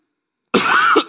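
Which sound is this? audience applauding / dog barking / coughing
coughing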